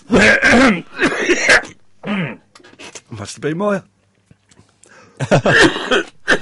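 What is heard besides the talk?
coughing and throat clearing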